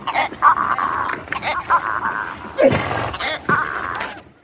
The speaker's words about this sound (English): So those are the sounds of adult zebras. They make a surprising amount of noise and communicate using barks, brays, snorts, and chirps.